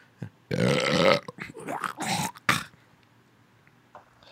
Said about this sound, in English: Don't burp on your podcast.